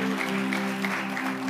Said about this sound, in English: Your clapping is not good.